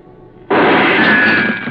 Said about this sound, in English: The shot had come from over near the door.